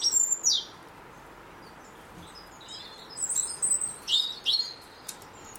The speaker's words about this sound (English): It's a bit more. little bird song going on now. Yeah. Robin. And then there's a great tit in the background.